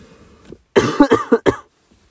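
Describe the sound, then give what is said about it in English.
A burst of several loud coughs in quick succession, harsh and chesty, following a brief low rumble of throat clearing, then silence. “I'm clearing my chest, yawning, you know, everything, and coughing and all that.”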